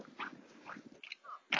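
A female dog being walked on a sidewalk makes a few soft, short whining and snuffling noises with some mouthing sounds, ending in a brief louder rustle. No one speaks.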